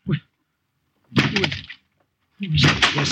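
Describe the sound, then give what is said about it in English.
Heavy crashing blows as a door is broken down at a church, the house of God: a short thud, then two longer, loud splintering crashes separated by brief silences, with no voices. “What right are you coming in like this, breaking down the door?”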